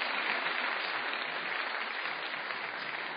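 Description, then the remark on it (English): An audience at an evening panel debate applauds steadily, a dense, even wash of clapping hands that holds at a constant level for the whole few seconds without pauses or voices. “And may I just invite one more round of applause for Robert Rosenkranz for making this possible.”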